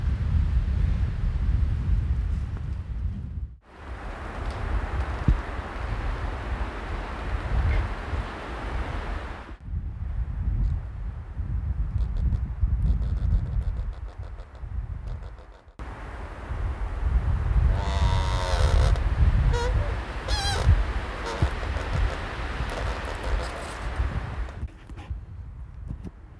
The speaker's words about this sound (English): The wind blows in the fall and there's no leaves to buffer the sound. Trees rub against each other. Sound like ghosts from a forgotten past.